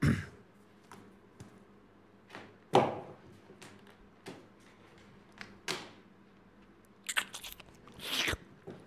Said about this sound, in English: Just get a sip of water.